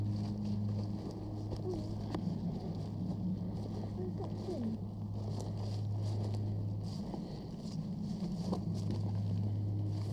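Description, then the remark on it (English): A small plane's engine drones steadily overhead above woods, a low, continuous hum with a faint tonal whine that wavers slightly in pitch, set against breezy outdoor background noise. “Sounds like there's a plane flying about as well. I think there's a small airport around.”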